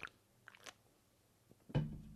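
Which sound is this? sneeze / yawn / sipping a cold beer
sipping a cold beer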